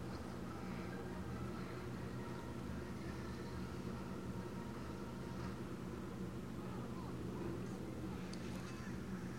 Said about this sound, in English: As usual, my air conditioning is on. If you hear a little hum, it's kind of relaxing.